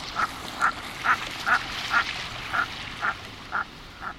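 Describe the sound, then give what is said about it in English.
Common merganser duck calls: about nine short, croaking notes repeated at a steady, even pace over a soft, hissing outdoor background, fairly consistent in loudness. “This makes common mergansers and some other diving ducks among the last of the migrants to appear in the U.S. in late fall.”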